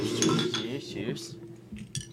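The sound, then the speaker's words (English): Glasses clink together in a toast, a few bright, sharp taps close by, with voices murmuring underneath. “Damn, good thing I didn't take a swig. Cheers, homies.”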